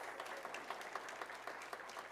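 A crowd claps steadily at a church for a speaker from Upward Christian Church, a dense patter of many hands at moderate volume with no voices over it.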